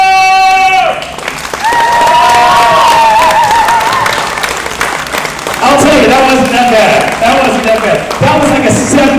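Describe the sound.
A crowd at ThunderCon bursts into loud, sustained applause after a Tarzan yell, a steady dense crackle of clapping lasting several seconds, with whoops and cheering voices rising over it in waves.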